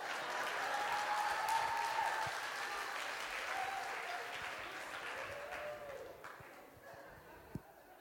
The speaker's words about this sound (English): Hey, please clap now. If you have a daughter here that will need husband one day, you better clap for my son.